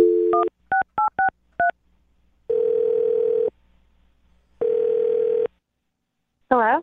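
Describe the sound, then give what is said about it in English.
A quick series of touch-tone beeps as a phone number is keyed in to call a woman, followed by two long buzzing ring tones separated by a pause, then a brief warbling sound at the end. “Okay, so we'll get her on the phone and find out what went wrong.”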